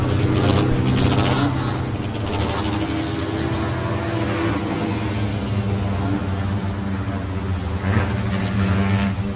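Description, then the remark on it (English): The engine of the 1,000 horsepower Sunbeam, the first car to go over 200 miles an hour, which broke the world land speed record in 1927 and is kept at the National Motor Museum, runs loudly: a deep steady rumble with rough throbbing harmonics and small surges in intensity, no speech. “This is the first car that went over 200 miles an hour.”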